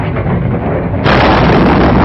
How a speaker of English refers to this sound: Finally, the plane spins out of control. A bolt of lightning strikes it, and it disintegrates into a ball of flame.